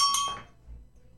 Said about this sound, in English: I'm going to let that bell go. It's fine. Yeah, the bell goes there. That's all it is.